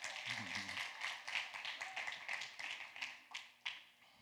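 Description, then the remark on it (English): An audience claps together after a speaker announces a new series titled Escape Room, a dense, steady patter of many hands, moderately loud, with a few sharper individual claps standing out as the applause tapers near the end. “You can clap for that.”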